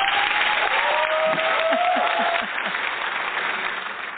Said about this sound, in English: Audience, big round of applause for Dr. Pam Popper.